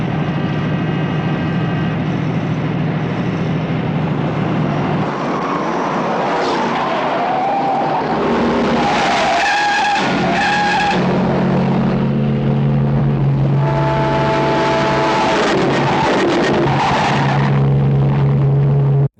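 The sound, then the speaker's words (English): Loud, continuous engine roar from racing cars in a car movie trailer, revving and surging throughout, with brief high squealing bursts in the middle like tires skidding. Dense and intense, with no talking. “So they didn't have a lot more than just like, okay, a bunch of engine sounds, Rory racy bits”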